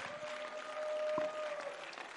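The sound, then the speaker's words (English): An audience claps steadily together in praise to God, a dense wash of many hands with a sustained tone running faintly underneath, at moderate volume. “Oh, clap your hands and let's give praise to him right now.”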